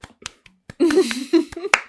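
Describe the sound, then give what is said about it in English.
Sharp, irregular hand claps, around seven or eight, from a lone clapper, while a voice talks or calls out through the middle of the clapping. “Let's just get a round of applause.”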